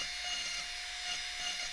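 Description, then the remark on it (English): A small rotary zip cutter grinds steadily through a dried gourd, a continuous hissing, buzzing whine with a faint steady hum underneath, unbroken for the whole stretch and with no voices. “You mentioned that you like the zip cutter because it doesn't burn your gourd.”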